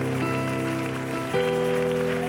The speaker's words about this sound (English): Why don't you put your hands together for Jesus now?